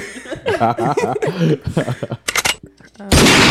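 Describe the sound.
Voices chatter and laugh, then a sudden, very loud gunshot blast bursts in at the end, harsh, drowning everything out.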